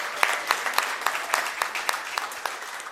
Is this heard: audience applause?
yes